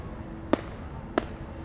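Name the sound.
fireworks exploding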